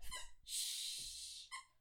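A squeaky dog toy being chewed: a short, high, whistling squeak, then a long breathy wheeze as the toy refills, and one more brief squeak. No voices.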